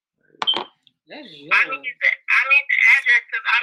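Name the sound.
phone ringing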